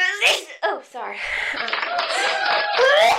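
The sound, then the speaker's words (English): A short burst of crowd applause with cheering voices mixed in, loud and dense for a couple of seconds after a brief vocal outburst at the start, played as an effect from a cheap Chinese-made soundboard. “The Temu. audience just applauds.”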